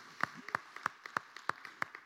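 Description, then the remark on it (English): Audience clapping in a steady, fairly quick rhythm, sharp hand claps about three per second with softer scattered claps between them, fairly quiet and with no voices. “Yeah, clap for that.”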